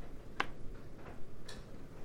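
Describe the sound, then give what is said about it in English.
A sharp, loud click like a container lid snapping, followed by two softer, duller clicks spaced about half a second apart over a quiet background hiss, with no talking. “I look forward to editing all those big fucking clicks out of the recording.”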